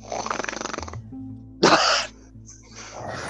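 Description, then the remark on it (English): A dog named Kaya growls in a low, rough rumble with a rapid fluttering pulse, breaks off into a short harsh huff, then starts a softer, steadier growl again. “I like how Kaya's growl is the exact same as a growl”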